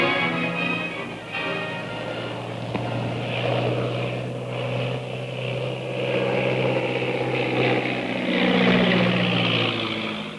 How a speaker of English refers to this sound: Big black seaplane circles over the plantation house and lands like a dead leaf on the surface of the inky river.